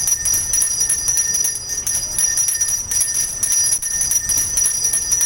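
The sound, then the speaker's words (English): A Salvation Army handbell rings continuously in a rapid, steady shaking rhythm during the organization's fundraising drive in Minnesota, its bright metallic tones sustained, with low background noise underneath and no voices. “One of the staples of that, of course, is bell ringing”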